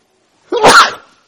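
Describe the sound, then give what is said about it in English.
A single loud sneeze during a sermon bursts out sharply and trails off quickly, with silence before and after it. “it's got to happen every sermon. I'll be called the sneezing prophet, right?”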